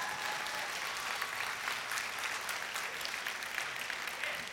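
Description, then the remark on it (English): Sustained applause from a large audience, a dense, steady wash of many hands clapping at once at an even level for several seconds with no voices standing out. “Clap. Go on, clap.”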